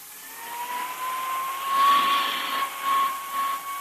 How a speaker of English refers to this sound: what's the point of going over that coat with a hand vacuum?